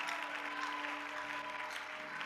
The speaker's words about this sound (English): If you're a Christian, you clap for Jesus.